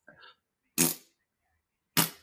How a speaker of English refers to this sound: I hope those farts would be more dramatic, but little farts.